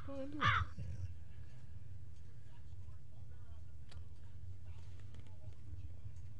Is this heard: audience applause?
no